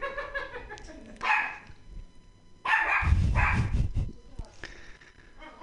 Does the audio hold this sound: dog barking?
yes